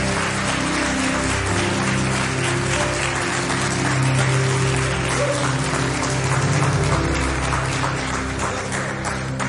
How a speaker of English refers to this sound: So I know you're clapping now, but why don't you give a warm Hedgesville and Berkeley Springs welcome to